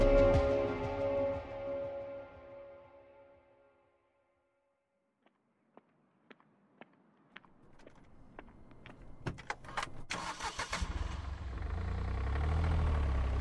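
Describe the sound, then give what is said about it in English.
A series of sharp clicks and mechanical knocks, like someone settling into a rented four-wheel-drive car, then the engine rumbles up and holds a steady, low drone as the car sets out for Giant Forest in early spring. “Back in the early spring, I rented a car with four-wheel drive”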